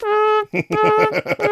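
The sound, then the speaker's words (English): A voice imitates a garbage truck's reversing beep: one long, steady buzzy tone, then a quick run of short, evenly pitched beeps, loud and with no other sound around it. “That's the sound of a garbage truck backing up.”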